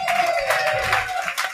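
Audience applause on a TV show welcoming a judge, a dense and steady wash of many hands clapping at once, fairly loud throughout, with a faint sustained tone humming underneath.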